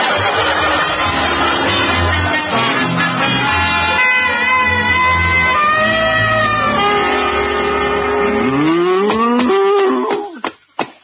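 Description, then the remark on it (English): A cow in a school classroom moos loudly and at length, a long drawn-out low bellow with a rising, wavering pitch near the end, without any talking over it. “I want you to stay here with the cow”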